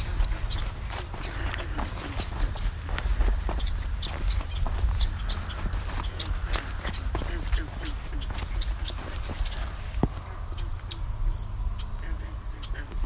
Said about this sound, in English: Three more bobolinks. Mostly just calling though, there's no songs yet.